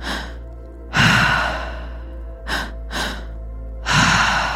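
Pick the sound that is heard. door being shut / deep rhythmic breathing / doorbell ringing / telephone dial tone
deep rhythmic breathing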